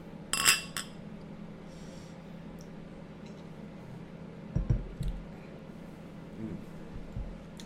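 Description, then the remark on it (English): Beer glasses clink together once in a bright toast near the start, followed by a few soft knocks and thuds against a quiet background. “Cheers.”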